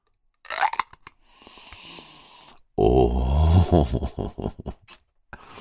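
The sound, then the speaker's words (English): The seal of a jar of BC Organic Power Mints cannabis from Simply Bare cracks open with a sharp crunching crackle, followed by a soft rustling hiss and then a louder, low grinding twist of the lid, ending in a few quick clicks. “let me open this jar and get my first sniff of Power Mints. Crack the seal.”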